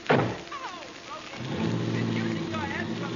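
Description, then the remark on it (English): A car door slams with a single solid thunk, then after a short pause the engine starts and settles into a steady, low, droning rumble as the car pulls away. “I simply forgot to shut the door. Now, please, get in.”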